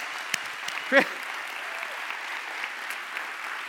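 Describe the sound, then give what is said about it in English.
A crowd claps steadily throughout to honor a man who came and did a demonstration, a dense patter of applause with one short, sharp whoop of cheering rising above it near the start. “I think you can do better than clap.”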